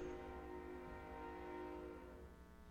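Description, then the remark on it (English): A distant approaching train, one or two intersections away, sounds its horn in one long, steady blast with a low rumble of rail traffic beneath it, faint and far off, with no voices. “That train's still pretty far away. It hasn't crossed through our intersection yet.”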